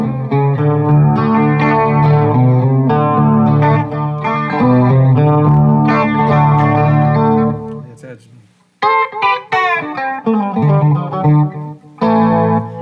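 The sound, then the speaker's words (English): Guitar played through the chorus and echo effects of an H2O unit, shimmering sustained chords ringing out, a brief pause near the end before the playing returns with trailing repeats. “And I've got the H2O, which is the chorus on one side, and echo.”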